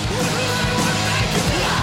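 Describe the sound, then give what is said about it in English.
A loud, dense music track from a Canadian act, about 4.5 minutes long, with a raw, yelled male vocal shouting over distorted instruments, sustained for the whole short stretch. “You said it wasn't going to be screamo. It's not. It's yelling.”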